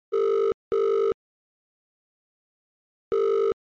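A telephone ringback tone sounds its steady double burst, two short electronic tones, a pause, then another pair starting, as a phone call rings before being answered. It is clear, with no voices.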